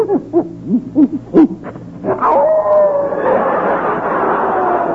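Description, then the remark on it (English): A hound, bought as a gift for children, lets out a quick series of short, rising yelps, then breaks into a long, wavering howl that holds steady and fairly loud, with no one talking. “Hey, Frankie, you sure this hound ain't part wolf?”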